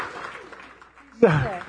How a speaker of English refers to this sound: that's worthy of applause as well.